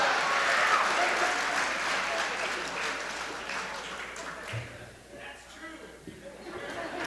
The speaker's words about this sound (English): I pretty much got it. That kind of rousing applause.